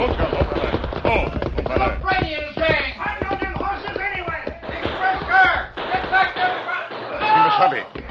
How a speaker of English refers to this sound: As the Lone Ranger and Tonto urged their horses at top speed toward the stalled railroad train, the sound of gunfire increased.